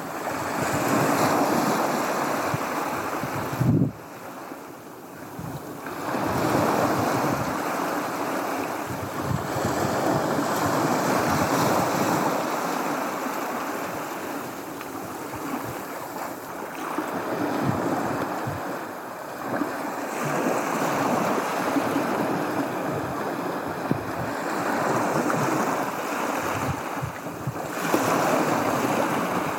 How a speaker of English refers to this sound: And before we go, I have our sound of the week this week. That's from your friend of mine, Tim Partridge. And this one is the seashore.